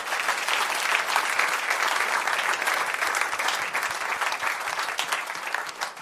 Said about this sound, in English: May God bless you all. A round of applause.